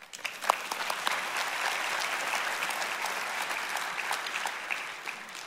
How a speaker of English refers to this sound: Praise the Lord. Why don't you give the Lord a hand of applause?